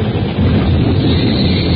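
A tornado wind storm rages through the night, roaring steadily and loudly, a dense rumbling rush of air heavy in the low end, holding constant throughout with no voices.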